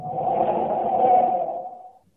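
A loud, sustained squeal of brakes over a rough engine rumble as a car roars up on a dam and skids to a halt, holding for about two seconds before fading off abruptly.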